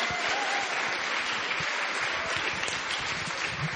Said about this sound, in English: How about a round of applause for our event tonight, the launch of … by the ….